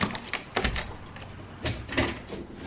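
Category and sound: household object, door being opened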